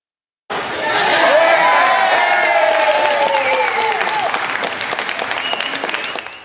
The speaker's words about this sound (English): A sea of orange, yes, this boisterous group of Dutch soccer fans in New West watched as their team took on the United States in today's FIFA Women's World Cup final.